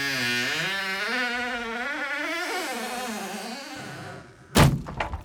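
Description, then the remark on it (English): A heavy medieval dungeon door in a castle, by the sitting room, swings open with a long, wavering, groaning creak of old hinges that slides up and down in pitch, ending in a loud wooden thud and a brief rattle. “Well, here, let's go into the sitting room and I'm just gonna open up this, you know, medieval dungeon door down here.”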